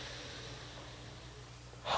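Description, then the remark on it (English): A long, steady, deep breath drawn in through the nose, fairly quiet, ending in a louder, rushing breath out through the mouth just as it begins to release. No one speaks. “Let's take some deep cleansing breaths. In through your nose, out through your mouth.”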